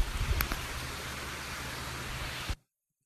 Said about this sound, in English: Did you find that rain soothing? I was I kind of find soothing. Yeah, it really did sound soothing.